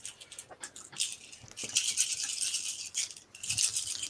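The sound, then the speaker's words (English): A handful of dice rattles and clatters continuously for several seconds, a dense bright rattling with bursts of louder clicks and a brief pause before a final flurry; the dice are rolled for an aimed shot, looking for sixes. “This gives me a significant number of dice.”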